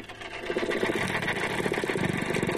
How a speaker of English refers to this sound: Back on the lagoon, a drama is about to unfold. There you go. There you go. That's a dolphin.